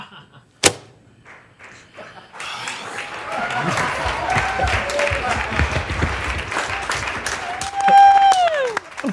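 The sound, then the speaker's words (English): A single sharp bang, then everybody on a film set breaks into steady clapping after the cut, lasting several seconds, mixed with cheering voices and whoops, and a loud descending whistle near the end. “That's just everybody on set clapping after.”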